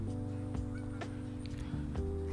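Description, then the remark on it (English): Birds calling in a busy, overlapping chorus, with sharp repeated calls standing out over a steady low hum of continuous chatter. “Sorry, y'all, but I was looking, trying to figure out what the heck these birds got going on.”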